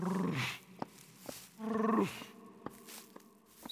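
A deep, rumbling growl from a wild animal hidden among the trees in the woods sounds twice, each a low harmonic snarl with a falling pitch, separated by quiet gaps with faint clicks and rustles in the background.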